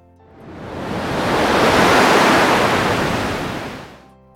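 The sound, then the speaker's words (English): A large ocean wave swells and crashes onto a boat at sea in a broad roar of rushing water, building over a couple of seconds to a loud peak before washing away into quiet. “He saw the wave heading for them and railed at the crew, shouting, "For God's sake, get her around!”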